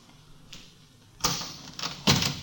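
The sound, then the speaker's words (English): A door is unlatched and pushed open, with a sharp click and rattle of the handle followed by a creaking swing and a final knock, no voices present. “Well, try the door. Hmm? Oh, yeah. It's open.”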